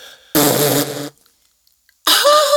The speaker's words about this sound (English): I had just farted.